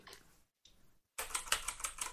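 Rapid, clattering keystrokes on a computer keyboard, fairly loud, starting with a few softer taps, pausing briefly, then a dense burst of fast typing.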